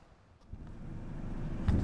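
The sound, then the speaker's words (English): Low, steady vehicle rumble from inside a moving city bus nearing a bus stop, the engine drone slowly building in loudness with faint rattles and road noise, no voices. “Right, we're on the bus. We're nearly at the bus stop.”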